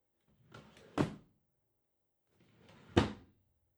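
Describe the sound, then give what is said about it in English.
Two desk drawers slide and shut in turn, each a short rolling scrape ending in a solid wooden thunk, about two seconds apart, as someone searches the desk. “Desk drawers.”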